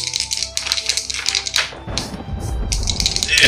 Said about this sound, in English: Come on, control group, random dice.